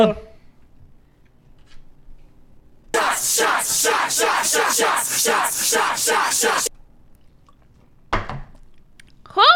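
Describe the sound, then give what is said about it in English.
A group of people holding drinks in the air loudly yells the toast "Holla" in unison after a count of three and breaks into cheering, a dense burst of shouting lasting a few seconds before it cuts off, followed by a brief voice. “On the count of three, scream Holla.”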